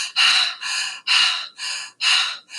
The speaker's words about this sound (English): And so for this first part, you're going to start breathing the breath of fire. And the fire breath is a very quick breath, a very masculine breath.